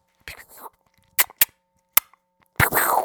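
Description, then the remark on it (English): A voice makes gunshot sound effects over a Zoom call: a rough opening burst, then three sharp cracks spaced irregularly, ending in a longer blasting shot that trails off, fairly loud. “Zoom is cutting off your sound effects.”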